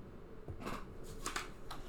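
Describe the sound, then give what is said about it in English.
Soft rustling and scratchy strokes as a clean sheet of blue paper is handled and drawn on, a circle and a dot being drawn as a t-shirt design, coming in several short bursts over a quiet background. “So I'm going to take this clean sheet of paper of blue, and what I'm going to do is show you what I would put on my t-shirt.”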